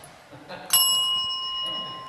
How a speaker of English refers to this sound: In the side room, I found in the box of cords and things a bell.